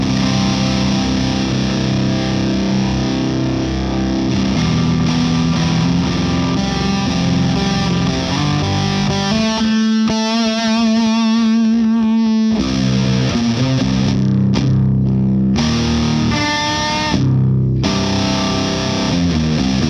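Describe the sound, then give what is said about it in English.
A lightly overdriven electric guitar plays clean-ish tones, chords and single notes, through a UA Ruby 63 Vox AC30 amp pushed quite a bit, steady and fairly loud, with a sustained ringing chord in the middle and no talking. “Here's gonna be just the clean tones, the clean-ish tones, the cleanest that this mofo goes.”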